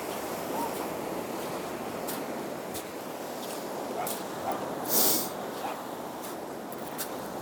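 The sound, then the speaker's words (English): Steady rushing surf fills the scene, broken by a few short splashes and one louder, brighter splash midway, as a dog plunges into the sea waves after a ball its owner throws into the water. “His owner is throwing the ball into the water and he's just wants to drown himself before he gets the ball.”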